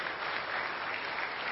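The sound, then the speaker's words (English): A crowd at WFR church claps steadily for the people who came to Christ or joined the church family in the last five years, a dense, even wash of many hands with no breaks or voices, holding at a moderate level throughout. “All right, yeah, that deserves some applause.”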